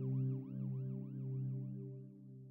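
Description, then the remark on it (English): An ambulance siren cycles rapidly up and down, about twice a second, over a steady low engine hum. It sounds loud, with no voices. “And the sound of the ambulance kind of kept me conscious and focused until the firefighters arrived and saved me.”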